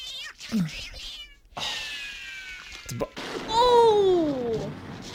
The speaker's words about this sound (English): The cat is fighting with the bomb.